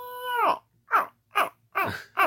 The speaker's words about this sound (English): And that elk call is just ridiculous. Did you hear it?